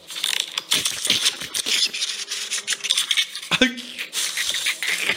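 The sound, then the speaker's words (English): Rapid, dense clicking and clacking of fast typing on a Logitech mechanical keyboard runs steadily throughout, with a brief tonal voice-like sound partway through. “Dude, if you want that, that's a mechanical keyboard.”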